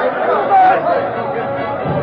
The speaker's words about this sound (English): In town, the sheriff's announcement brought angry comments.